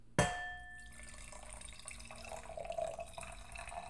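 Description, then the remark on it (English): A glass gives a sharp, ringing clink, then soft liquid sounds follow as someone sips wine, the slurping swelling slightly toward the end, with no talking. “And actually, let me take a fat sip of wine, because I need to breathe for a second.”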